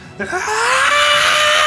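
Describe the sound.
A person voices the monstrous, furious scream of Vecna, loud, starting with a short grunt and then swelling into one sustained, raspy shriek that holds to the end with no other sounds.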